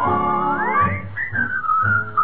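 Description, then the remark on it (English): A person whistles a bright melody with rising and falling notes, clear, over a soft rhythmic musical backing. “Whistle all the day.”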